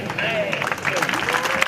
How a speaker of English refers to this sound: The crowds cheer at the skillful strike, waving white handkerchiefs to show the torero deserves a bull's ear for his performance.